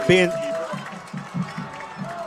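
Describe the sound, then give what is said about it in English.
A stadium crowd roars in the background, a steady wash of cheering from the Bob Jones student section at Madison City Stadium after a 3-yard touchdown run, beneath a man talking excitedly over it, with a brief tone sounding at the very start. “Running into the Bob Jones student section, going crazy once again here at Madison City Stadium.”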